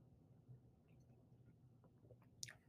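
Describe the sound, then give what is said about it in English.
Quiet sipping of a Bell's Official beer: soft wet mouth clicks over a low hum, ending in a brief sharp slurp near the end. No one speaks. “Taking a sip of my Bell's Official.”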